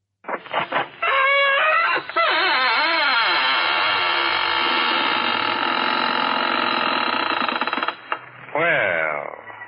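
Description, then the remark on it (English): The squeaking door of the radio show Inner Sanctum creaks slowly open with a long, loud, wavering squeal that bends up and down in pitch for several seconds, ending in a shorter final squeak. “This is Raymond, your host of the Squeaking Door.”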